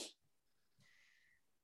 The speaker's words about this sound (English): Sorry, I was rushing a sneeze, so I was quick to... I just fucking chopped off what I was saying like a fucking gate.